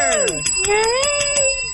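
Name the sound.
bell ringing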